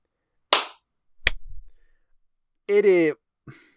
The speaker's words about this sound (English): Let's do one more clap. Okay. 07. That was better. Okay. Yeah, that one felt good.